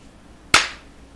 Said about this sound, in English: In between slaps?